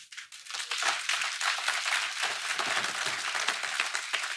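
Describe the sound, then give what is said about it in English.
A crowd applauds steadily, many hands clapping in a dense, crackling wash that holds an even level for several seconds with no voices over it. “Thank you for clapping.”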